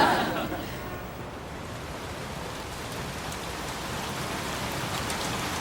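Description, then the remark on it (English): Steady rain pours down in a dense, constant hiss of drops striking surfaces, fairly loud, with no pauses throughout. “Hey, it's raining.”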